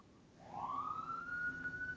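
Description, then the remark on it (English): An emergency vehicle siren rises in pitch and then holds a steady wail beneath a low rumble of background noise. “I mean, as the sirens go off in the background behind you.”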